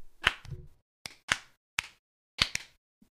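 A slow clap: around seven sharp, crisp hand claps at an unhurried, slightly uneven pace, some landing in quick pairs, with no talking over them.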